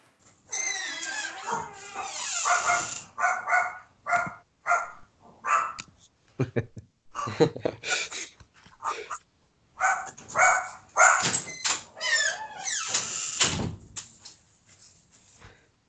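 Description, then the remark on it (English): A dog barks repeatedly, loud yelping bursts in an irregular series with short pauses between, some barks drawn out and whiny, fading to a few softer ones at the end. “Let's go ahead and get that out the way. Yes, I am living with dog.”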